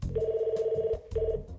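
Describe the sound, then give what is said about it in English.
A telephone rings in an apartment in two electronic bursts, a long trill followed by a shorter one after a brief pause, clear, with a low rumble underneath. “The phone was ringing.”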